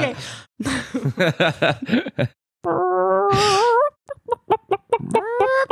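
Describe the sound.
A man imitates a chicken with his voice: choppy, rapid clucks, then long rising squawks like a hen's cackle. It is loud, with no other talking.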